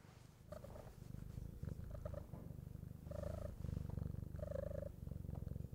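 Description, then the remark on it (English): A cat, Mr. Kitty, purrs steadily and close to the microphone, a continuous low rumble with a rhythmic pulsing texture and occasional brief higher chirpy tones, no talking over it. “Yes, he's here purring. Let's see if we can get a little purring action on the microphone.”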